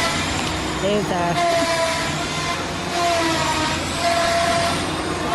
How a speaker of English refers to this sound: Combine. It is the combine harvester pelting people with confetti.